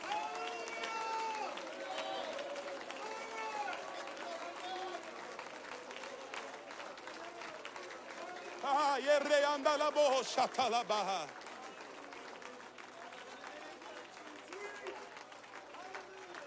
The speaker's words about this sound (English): I know this might be a little unorthodox, but I just feel the Holy Ghost right now. Why don't you clap your hands and just shout unto the Lord with a voice of triumph?